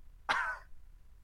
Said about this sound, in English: You're coughing while you're picking a booger. Yeah, that's what you do. That was disgusting.